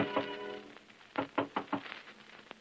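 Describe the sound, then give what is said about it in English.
A series of four quick, firm knocks on a woman's door, then a single knock a moment later, following a brief fading tone at the start; moderately loud. “a little dewy-eyed, a little dazed, a little impervious to the knocking on her door that finally rouses her from love's sweet coma.”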